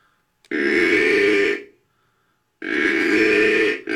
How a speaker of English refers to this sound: Can I take a guess? That's a deer. Yeah, a buck growling.